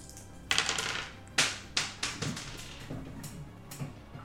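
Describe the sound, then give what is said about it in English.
Dice clatter across a hard tabletop during a tabletop game, a roll to catch a Sandshrew, in a burst of sharp, irregular clicks that bounce and taper off into a few lighter taps as they settle. “You have 20,000 dice right in front of you.”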